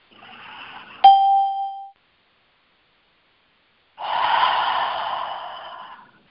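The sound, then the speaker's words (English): A soft breathy rush, then a brief bell-like chime and a pause, followed by a long, steady inhale drawn through the nose for about two seconds. No one speaks. “Take another deep breath through your nose.”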